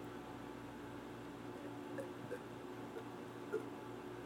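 A few soft, wet sips of water, quiet, spaced irregularly over a faint steady background hum with no talking.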